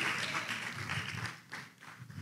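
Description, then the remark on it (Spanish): An audience applauds, a dense wash of many hands clapping at once, fairly loud and steady before thinning slightly toward the end, with no voices standing out. “Esos que no quieren ir al retiro fueron los que no aplaudieron.”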